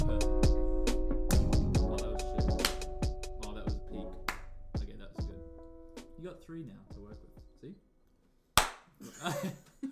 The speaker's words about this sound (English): Here's my clap.